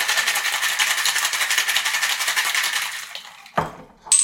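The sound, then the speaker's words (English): A cocktail shaker full of ice, holding a cocktail with citrus juice and jam, rattles hard in a fast, steady rhythm for about three seconds, then stops with a dull clunk followed by a brief bright metallic ring. “Shaker's full of ice.”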